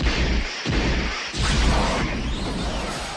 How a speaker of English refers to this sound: What the hell is going on? Whoa! A 1985 DeLorean just crashed into our podcast room.